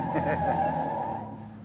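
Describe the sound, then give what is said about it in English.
A taxi cab drives through city traffic at night on Christmas Eve, its engine and tires giving a steady rumble with a brief squealing edge, easing off slightly toward the end. “Hey, cabby, you think you could pull out of this traffic line for a minute?”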